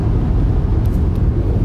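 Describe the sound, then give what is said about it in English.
A deep, steady engine-like rumble from an electric car's synthesized Mustang-style sound in its Unbridled drive mode as the driver stomps on the accelerator, droning loudly and continuously with no pauses and no talking. “It's got a little bit of that nice Mustang rumble.”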